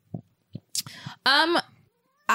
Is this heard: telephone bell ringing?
no